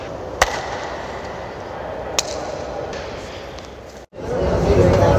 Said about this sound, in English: Okay, so we're here in Toronto's train station, and the enormous stone room makes a great echo sound.